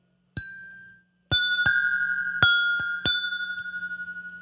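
Several glasses clink one after another, each strike leaving a bright, sustained ringing tone that lingers and overlaps like wind chimes, with a faint low hum underneath.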